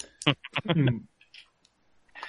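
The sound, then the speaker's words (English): A short burst of speech, then a few scattered, light clicks of small dice knocking together as they are sorted through to find three matching dice for a GURPS roll, fairly soft. “Now I've just got to find three matching dice.”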